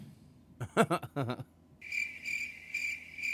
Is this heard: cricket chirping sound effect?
yes